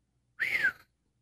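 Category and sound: bird, bird calling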